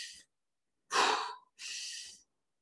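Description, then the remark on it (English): Deep, forceful breathing done to get through the cold: a sharp, heavy inhale followed by a long, steady exhale, with the tail of a previous breath at the start and no talking. “one way to get through the cold is you have to completely surrender and be super puffed up chest, like honor, and hit it in the face as you're doing that breathing of...”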